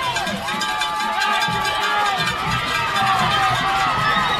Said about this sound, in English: Now you can hear the Siegel fans screaming across the way.